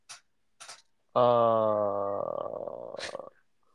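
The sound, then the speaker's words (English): After a couple of short breathy snuffs, a dog in a living room lets out a long, tonal whine that roughens into a low, rumbling growl lasting about two seconds. “I'm currently trying to find a dog from sitting on top of me”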